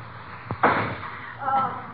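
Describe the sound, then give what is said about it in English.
A firecracker goes off inside a house, set off to try to blast open the lock on a suitcase: a sharp crack, then a louder bang that trails into a brief crackle and hiss. Faint voice-like sounds follow afterward. “Gee, what are you doing shooting firecrackers off in this house?”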